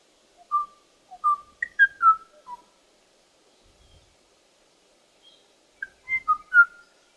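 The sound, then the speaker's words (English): A Kauai o'o bird, recorded in Hawaii, sings two short bursts of bubbly, jazzy whistled notes, rising and falling, separated by a few seconds of quiet. The song is clear, with no voices. “So this one is Hawaii, and it's a pretty special song. So you can hear it's kind of jazzy, bubbly.”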